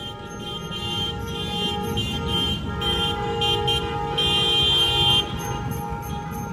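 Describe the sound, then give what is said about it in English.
Many car horns honk continuously, overlapping in sustained blasts and short toots over a low rumble of engines, loud, like a long caravan of cars and motorcycles honking together at a downtown protest calling for a mass rent strike. “That was a long caravan with the cars, with the people in motorcycles,”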